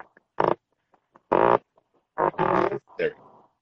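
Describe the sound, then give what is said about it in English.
A loud fart noise, not a natural fart, sounds as a series of short buzzing, sputtering bursts with brief gaps, ending in a longer rasping blast and a final quick puff. “Nice fart noise.”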